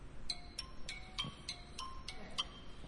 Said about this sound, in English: I'm going to forgive that phone for going off, right?